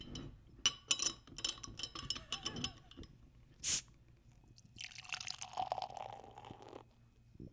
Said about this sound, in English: Yeah, good old-fashioned Mosher pour. Looks like a brown ale.